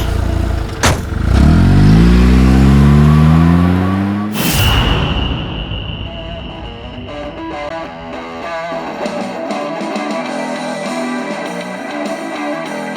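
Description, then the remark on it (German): A car engine revs hard and climbs in pitch as it pulls away for about four seconds, loud, then a sudden loud burst gives way to a ringing, clattering tail. “Steigen Sie in den Wagen da.”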